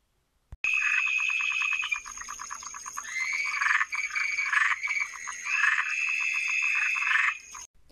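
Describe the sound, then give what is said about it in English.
A giant toad sitting on a yoga mat in the woods calls loudly, a continuous buzzing, pulsed trill that rises and falls in waves for several seconds, with no talking. “on one foot when I looked down to see a giant toad sitting on my yoga mat.”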